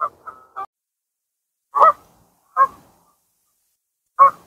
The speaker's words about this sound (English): Oh, here come the geese. These things have been zooming a little bit. These things have been terrorizing me all night.